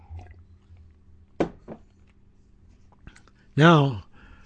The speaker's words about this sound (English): All right, let me get a sip of water here.